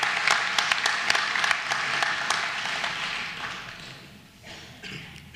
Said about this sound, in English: I think we should applaud these guys as well. Thank you for your faithful service.